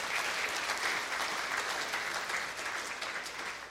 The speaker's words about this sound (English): The tomb is empty today. Amen? And because, yeah, let's clap. Amen. That's awesome.